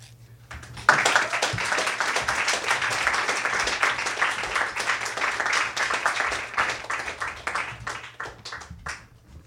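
An audience bursts into steady applause, a dense wash of many hands clapping that holds strong for several seconds before thinning out toward the end. A low steady hum runs underneath.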